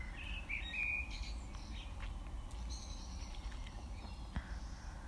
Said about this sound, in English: Maybe you can hear, I hear birds, rain.